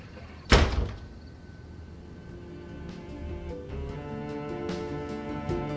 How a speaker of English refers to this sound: Just shut the door on your way out, okay?